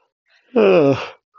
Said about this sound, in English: Yes, I yawn when I'm bored. I also yawn when I'm tired. This is a tired yawn.